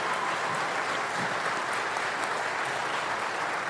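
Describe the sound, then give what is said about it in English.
A crowd applauds steadily for the speaker's wife as she is brought up, a dense wash of many hands clapping at an even, sustained level throughout with no voices standing out. “And so, you know, you can applaud her, too, because she's going to feel really bad.”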